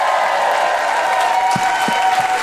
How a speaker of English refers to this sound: A big hand for the Bell House for having us here.